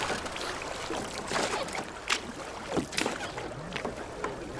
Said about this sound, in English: get rowing.